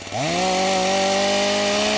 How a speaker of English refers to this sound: And hopefully I'll be able to get a chainsaw sound effect. Yeah. Insert here.